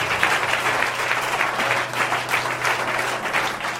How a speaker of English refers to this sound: It was quite a masterpiece. Just a round of applause for him.